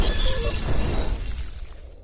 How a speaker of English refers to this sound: DOV2, we have engine failure. We must crash land on DKE Toy Planet. Oh my, we're doomed.